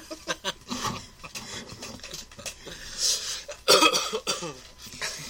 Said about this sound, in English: We'll edit that part out. The coughing. No, leave the coughing in.